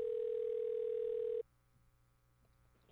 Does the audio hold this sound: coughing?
no